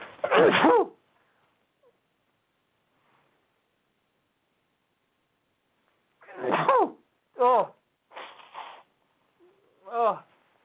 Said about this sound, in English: Wait, I'm like holding back a sneeze, and I've been doing that.